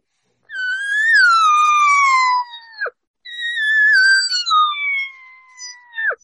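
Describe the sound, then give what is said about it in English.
Two long, drawn-out whining mews of an elk cow, the regathering mew, imitated on a call to draw a bull elk. Each is loud, nasal and slowly falls in pitch before ending with a short, sharp downward break. “And so I've used it and I call that the regathering mew.”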